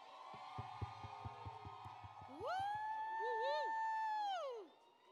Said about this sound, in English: Please, with all your body, give the biggest round of applause for Oscar award-winning costume designer, Ruth Carter.